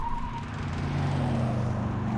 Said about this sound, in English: Actually, this is what this sounds like. It sounds like one of those, like, Hyundai Elantras.